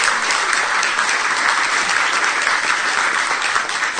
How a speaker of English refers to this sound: So, thank you. How about a round of applause for our travelers and preachers?